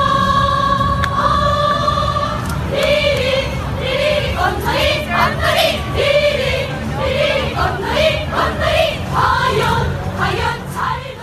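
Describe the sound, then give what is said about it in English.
A North Korean cheer squad at the games chants loudly in unison, starting with drawn-out sung tones, then breaking into quick rhythmic bursts of shouted syllables that continue steadily over a constant crowd-like background. “Why don't we start with the North Korean cheer squad first, and let's listen to a little clip of them in action.”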